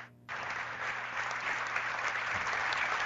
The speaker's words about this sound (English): Even our officials applauding.